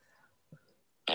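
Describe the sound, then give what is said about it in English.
After a brief near-silent stretch with a faint soft thump, a loud, buzzy fart sound effect from a soundboard blasts in abruptly at the end, raspy, with no talking. “I found the fart board while we were talking.”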